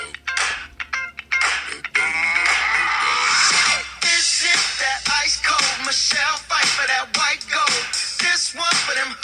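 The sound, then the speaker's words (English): A pop song plays through a small phone speaker, thin and tinny with little bass, a steady beat and bright vocals or synths running continuously at a fairly loud level, with no talking over it. “we'll just wait till the bass bit gets going here.”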